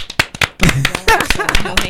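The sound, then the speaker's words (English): A short burst of quick, sharp hand claps, about half a dozen in a rapid patter, then voices start talking and laughing over a few lingering claps. “Can we get a round of applause for that?”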